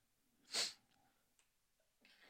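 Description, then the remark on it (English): A single sharp, forceful sneeze bursts out, followed by a few faint rustles and quieter breathy noises. “Bless you.”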